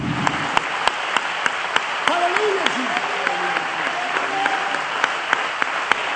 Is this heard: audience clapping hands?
yes